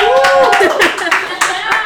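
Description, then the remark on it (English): A small crowd at a Disney trivia night claps and cheers, with a steady patter of hand claps under rising whoops and calls from several voices, fairly loud throughout. “Say hello, crowd, in the background.”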